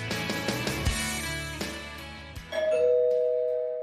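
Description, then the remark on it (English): A doorbell rings: a clear two-note ding-dong chime rings out and lingers. It is preceded by a few short knocks and clatters, and no one speaks. “Someone's at the door.”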